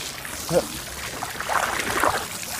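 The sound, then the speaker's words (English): Water runs steadily from a tap as someone washes sticky hands in a park, a continuous splashing hiss, with brief muffled voices rising over it now and then. “My hands are sticky. Are they? I need to go and wash them. There is water there.”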